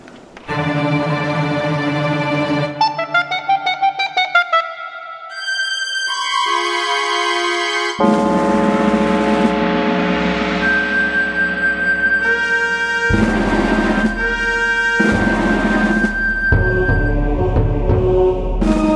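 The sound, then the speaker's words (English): The FLAD 29 Symphony Orchestra performs the modem dial-up theme, imitating a dial-up modem handshake: a sustained tone, quick beeping note patterns, then dense, harsh swelling chords with a long high whistling note, loud and without talking. “And Now the FLAD 29 Symphony Orchestra will perform the modem dial-up theme.”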